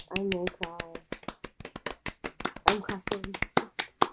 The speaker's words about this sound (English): I'm clapping.